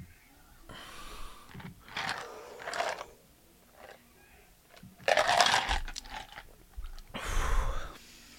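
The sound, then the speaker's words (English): Sipping and slurping noises from a drink of Screwball peanut butter whiskey, several short wet bursts spread over a few seconds with quiet gaps between, loud, no talking. “Oh, what were you sipping on there?”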